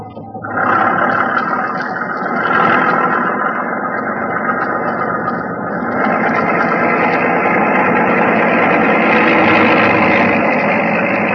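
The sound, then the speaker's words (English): A motor launch's third engine roars at full throttle as the boat heads up river in fog, kicking in after a brief moment and holding a loud, steady drone to the end, with no voices. “third engine, full throttle.”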